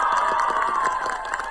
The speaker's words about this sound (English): That's not a very good applause for something so powerful.